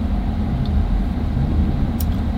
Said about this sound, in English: Wow. So yeah, that is actually a tow truck for a truck. So you're right, there must be a trailer that flipped or something.